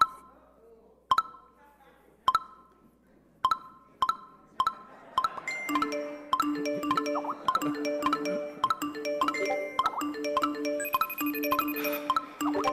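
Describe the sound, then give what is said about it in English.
Phone notification chimes start as a few spaced pings, then pile up faster and faster until overlapping tones and beeps form a dense, continuous barrage. “without the vibrations or the notifications or all the rest of the stuff that goes on”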